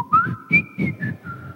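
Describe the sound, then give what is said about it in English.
A person whistles a short, wavering run of tones imitating a whistle talker, sliding between pitches in a speech-like pattern, fairly loud, with a few breathy bursts underneath and no words spoken. “Do you know any whistle talkers? Just kind of whistle with them.”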